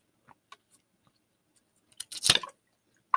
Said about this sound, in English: And yeah, let me drink some my water. I'm getting really thirsty.